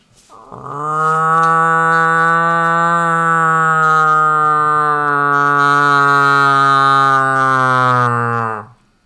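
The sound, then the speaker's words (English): A person imitates a cow moose call at a moose rutting pit, without a call device, by plugging the nose and using the hands: one long, loud, nasal moaning bellow holding a steady low pitch for about eight seconds before cutting off. “why don't you give me your best cow moose call?”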